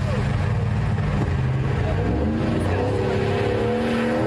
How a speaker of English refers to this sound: Pulling a travel trailer. That is a commercial for a Dodge truck, a Dodge Ram.